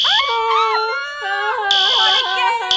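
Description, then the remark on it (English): A loud fire alarm blares in shrill, intermittent bursts, while a wavering, howling wail rises and falls continuously underneath and between the blasts. “Oh, that's just what we need. A fire alarm.”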